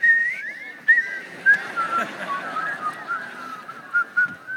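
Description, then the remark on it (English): A person whistles a wavering melody for several seconds, the notes sliding and bending with short breaks between phrases, moderately loud over a faint background hiss. “Whistle.”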